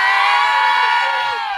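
A crowd in Mobile's Crichton community cheers and shouts "yay" together, a loud, sustained burst of high-pitched voices that holds steady for under two seconds before easing slightly.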